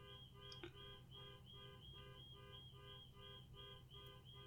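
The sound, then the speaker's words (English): A car alarm blares from outside in a steady, rapidly pulsing electronic tone that repeats without pause, fairly faint, with low rumbling background noise and no one talking. “Oh, somebody sets off a car alarm.”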